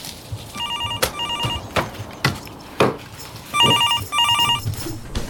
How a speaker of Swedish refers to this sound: Och nu ringer det. Vänta, jag måste gå in och svara i stugan.